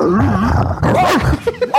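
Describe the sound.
A person imitates a dog with a rough, growling voice, ending in a few short, sharp bark-like yelps. The sound is loud, with no other talk.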